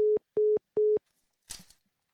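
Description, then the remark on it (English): A steady telephone line tone beeps three times in quick, even pulses, loud, as a call is placed to a woman's home phone, followed by a brief rustling clatter like a handset being handled. No one speaks. “I'll give her a call on that, see if it works.”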